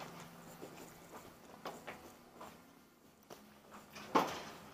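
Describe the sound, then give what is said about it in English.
A door is opened with soft scattered knocks and rattles, ending in one sharper clack of the latch or frame. It is otherwise quiet and no one speaks. “You don't realize that the door opens the other way.”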